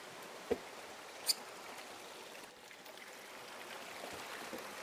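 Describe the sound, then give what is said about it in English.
A steady, soft trickle of a small creek in a rainforest, below the canopy, runs throughout, quiet and continuous, with a couple of sharp little clicks or drips early on and no voices. “And you can hear the trickle of the creek, so you can fill up your water bottle, which is great.”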